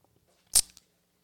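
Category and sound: food or drink, chewing food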